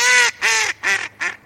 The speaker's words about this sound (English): Yep, that's our friend, the mallard, Anis platyrhynchos. This bird is super common in North America and Europe, and it's found over most of the Northern Hemisphere.